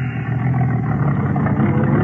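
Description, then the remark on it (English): A white car's engine rumbles steadily as it is sent through, a continuous low mechanical drone with faint clatter, holding an even loudness throughout with no voices. “Send the first car through.”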